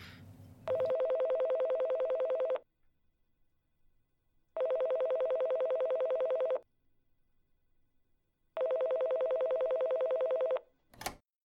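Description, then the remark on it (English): A phone line rings three times as a call is placed from a phone to police dispatch, each long buzzy ring tone lasting about two seconds with even pauses between, preceded by brief handling noise and ending with a sharp click. No one speaks. “I can just call it in from my phone, right?”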